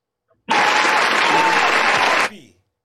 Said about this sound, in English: Clap, baby. We like that.